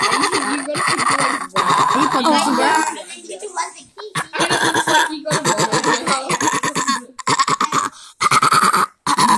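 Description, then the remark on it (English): Someone beatboxing: a run of loud, buzzy vocal mouth sounds in choppy bursts separated by short gaps, with no actual words spoken. “Alright, enough beatboxing.”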